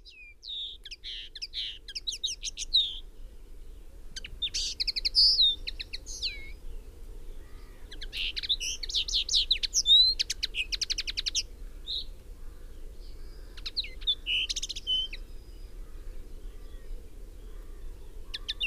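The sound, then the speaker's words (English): A linnet sings a rapid, twittering song of short trills and chirps in bursts over a steady low background rumble, with no voices. “So birds such as linnets, and its equally attractive cousin the goldfinch, suffered incarceration for their beauty.”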